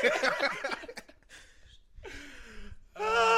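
A sneeze comes after a run of sharp gasping intakes of breath, ending in a loud, strongly voiced burst that sounds almost sung, with a low hum between the breaths.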